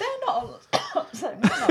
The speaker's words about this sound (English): is having a cough. Here we go.